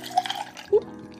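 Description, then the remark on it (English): Hendrick's gin pours briefly into a glass with ice, a short splashy trickle with a couple of drip-like plinks, fairly quiet, with no voices. “And I shall sling some of that into that glass.”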